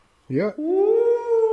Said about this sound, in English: I'm hearing... I am. I'm hearing some spooky howling going on over there.